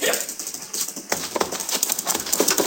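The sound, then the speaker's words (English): Horse hooves clatter in a quick, uneven rhythm as a man gallops off on another man's horse, a steady run of sharp hoofbeats at moderate loudness with no voices. “That was Luther, Mr. Dillon, and he took your horse.”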